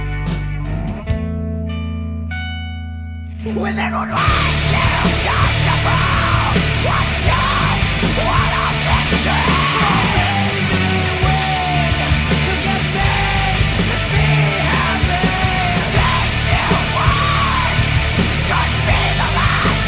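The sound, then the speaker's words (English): A rock song opens with a few seconds of sparse, ringing guitar, then crashes into loud, distorted full-band playing with harsh screamed vocals that continue without letup. “Yes, singing and screaming.”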